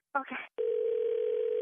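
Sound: telephone dial tone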